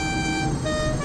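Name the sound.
truck horn honking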